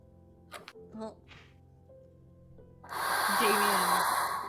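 Heavy breathing muffled into hands: a few short, sharp huffs, a brief pause, then a long, loud, rushing breath of noise that fades out at the end.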